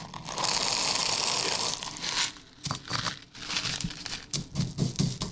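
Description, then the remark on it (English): Steady gritty crackling at first, then a series of sharp, irregular crunches as hard peppercorns are crushed and ground, with no voices. “Oh, we have to crunch our peppercorns.”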